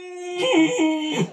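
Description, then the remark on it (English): A voice imitates a character screaming into a pillow held over his face while sitting on a bed, heard as the door is opened: one sustained, strained wail lasting just over a second, wavering and bending in pitch before dropping off at the end. “You open the door and you see Yuri sitting on the bed with a pillow over his face, screaming.”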